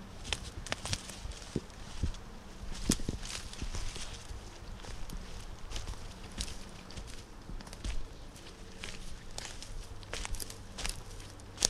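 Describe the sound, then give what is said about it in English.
Footsteps squelch along a soggy, muddy trail after rain the night before, a steady run of soft crunching and sucking steps with occasional sharper snaps, no voices, over a low rumbling background. “You pick the mushy trails. I'll step on it.”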